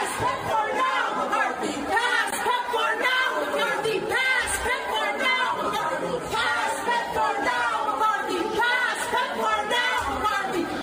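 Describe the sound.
Protesters who have stormed an office scream and chant at the top of their lungs, a dense wall of overlapping raised voices that never lets up, with shouted bursts rising above the steady roar of the crowd.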